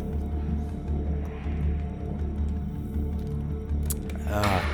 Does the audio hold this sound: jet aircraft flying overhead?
no